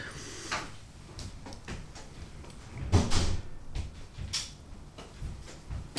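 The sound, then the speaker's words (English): A front door being unlatched and opened with keys left in the door, to let a woman in: scattered light clicks and rattles, then a heavier clunk midway, followed by softer knocks and shuffling. “So, do you mind if I just go and let her in? Absolutely. The keys are in the door.”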